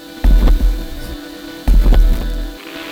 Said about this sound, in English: a piezo pickup combined with like the amp pickup, creating this weird, like, static distortion thing